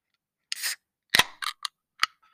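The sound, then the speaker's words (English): A chair clangs as it is moved: a short scrape, then a loud bang followed by several quicker, lighter knocks at an irregular pace, with no talking. “Because plus, you're supposed to put your chair in here before so that no one can hear all those clanging sounds.”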